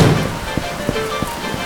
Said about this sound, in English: What was that? A storm? It wasn't supposed to rain today. How did it come on so fast?